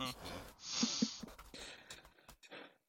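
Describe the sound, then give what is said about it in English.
A raspy, wheezing animal snore with a nasal, bleating snort in the middle, followed by a few shorter breathy snuffles that trail off quietly. “I would like to add for atmosphere that there is bleat snoring happening during this entire conversation.”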